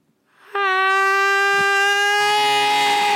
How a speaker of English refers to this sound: It has the scream of an infant, I guess, but loud and hysterical.